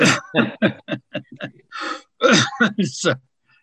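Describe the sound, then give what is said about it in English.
A fairly loud voice coughs and clears its throat in a short series of rough bursts, with a breathy rasp in the middle and no clear words spoken. “That makes me cough.”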